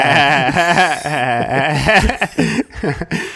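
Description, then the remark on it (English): A person's voice bleats like a sheep, a wavering, quavering tone held for a couple of seconds before breaking into short choppy bursts, fairly loud. “Sound like a sheep there for a second.”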